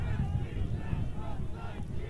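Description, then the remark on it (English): A large crowd chants together, a dense, steady roar of many voices with a constant loudness and no pauses. “Now they're chanting.”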